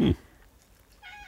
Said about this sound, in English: She's meowing.